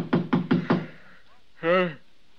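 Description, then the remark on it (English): Four quick, evenly spaced, solid knocks on a door at the Providencia Hotel at 6 a.m., followed after a short pause by a brief voice calling out. “Just a minute, I'll get up and open the door.”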